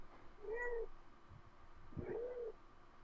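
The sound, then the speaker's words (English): A cat meows twice, two drawn-out, wavering calls about a second and a half apart, moderately quiet against a soft background hum with no talking. “Hello, kitty.”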